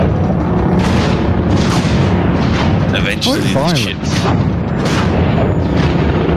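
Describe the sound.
A dense, roaring sci-fi lightning storm as a ship passes through a hyperspace cloud with a lot of lightning rumbles continuously, with crackling bursts and zapping, sweeping electrical tones rising and falling midway, while a voice speaks briefly over the din.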